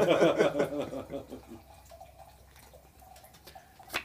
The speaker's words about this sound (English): He's pouring wine, not peeing.